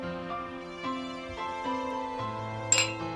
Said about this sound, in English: He taps his glass against yours.